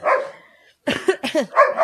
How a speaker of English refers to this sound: Wow, we got an audience. The dogs are going crazy. The dogs are barking.